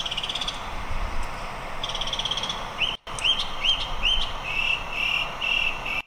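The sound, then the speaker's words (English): A bird calls again and again right outside a door on a sunny day, its sharp, rising notes repeating in quick succession over a constant hiss of background noise, with a brief break midway. “Actually, I took a video of a bird today.”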